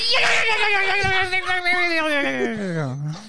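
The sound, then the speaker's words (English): A person's voice does a dolphin squeal impression: one long, loud, strained wail lasting about three seconds, its pitch sliding slowly downward and wavering near the end. “Can you do the Dolphin one more time?”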